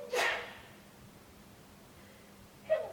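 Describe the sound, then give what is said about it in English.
A sharp, breathy sneeze bursts out at the start, then a stretch of near-quiet hiss before a second, shorter sneezing burst right at the end. No one speaks. “Sneeze happens, right? And maybe we're still right here.”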